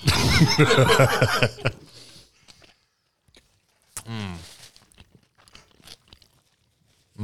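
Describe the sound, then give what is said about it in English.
A bite into a Whopper burger with soft, not very crunchy crunching, followed by quiet chewing and a few small mouth sounds, with a brief murmur of voice partway through. “Whopper in my hand. Get a little, get an ASMR bite.”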